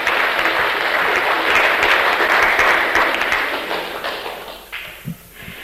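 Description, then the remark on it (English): An audience in Birmingham applauds to welcome a speaker to the front, with dense, steady clapping that holds for several seconds, then thins out and fades toward the end, leaving a few scattered claps. “Give him a clap. Make him welcome.”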